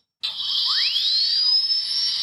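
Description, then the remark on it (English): A mini chainsaw kicks on abruptly with a shrill motor whine, revving up quickly in pitch and then holding a steady, loud, high buzz to the end. “Mini Chain Saw In Action”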